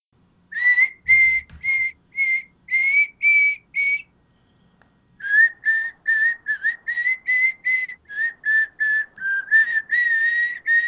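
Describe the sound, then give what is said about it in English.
A person whistles a wandering, unrecognizable melody in short, clear notes, pausing briefly before continuing with a longer run of quick, evenly paced tones. Fairly loud, with no talking. “Nothing like a little tuneless whistling.”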